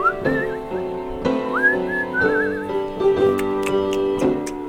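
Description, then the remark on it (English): Someone whistles a short, wavering melody, the notes sliding and trilling across several seconds over a steady, sustained musical backing, with no talking. “I was always impressed with your whistling.”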